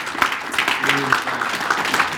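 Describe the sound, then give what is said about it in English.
A church audience claps together as a hand-clap offering of praise to God in a steady, dense wash of applause, with voices calling out and cheering over the sustained clapping throughout. “Let's give the Lord a hand clap offering.”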